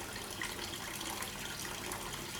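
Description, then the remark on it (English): Water steadily drips, trickles and splashes into a fish pond, a continuous soft hiss of flowing water at an even level with no voices. “because Balinese sounds for me like a water dripping, like you can hear, because I have in front of me this water of my fish pond.”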